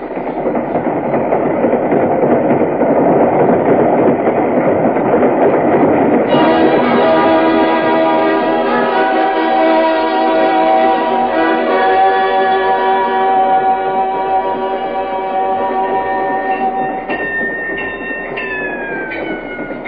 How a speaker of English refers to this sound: one night on a train across Virginia.